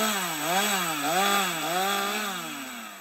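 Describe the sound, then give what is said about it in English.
A chainsaw engine whines steadily as it cuts firewood on a farm, its pitch rising and dipping in slow waves as the blade bites and eases. Loud and continuous, with no voices. “be it using our chainsaws to take out firewood or planting the next generation”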